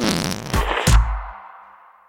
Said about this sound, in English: If everyone knows the whoopee cushion, why does no one get credit for it? Is it a brand, a name?